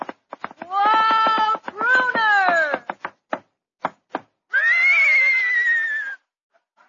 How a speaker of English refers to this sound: Hey, Abbott, there's somebody riding into the studio on a horse.